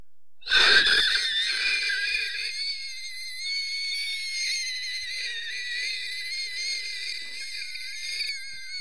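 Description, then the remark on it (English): During an animal-impression game, a voice imitates a meerkat call with a sustained, shrill, squeaky squeal that wavers in pitch for about eight seconds. It starts with a sharp burst and stays steady and fairly loud, with no talking. “That actually is what a meerkat sounds like.”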